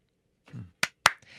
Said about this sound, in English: Okay, more claps.